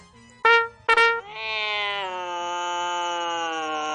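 A cat gives two short, sharp meows, then lets out a long, drawn-out, steady yowl that holds for several seconds. The cat sounds loud, with no one talking.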